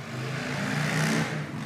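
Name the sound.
motorcycle engine revving past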